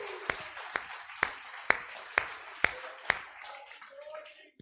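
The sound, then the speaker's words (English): An audience claps for Jesus after singing, in a steady rhythm, about seven sharp, evenly spaced claps standing out over a softer wash of crowd noise before the clapping fades away. “Give him a hand clap.”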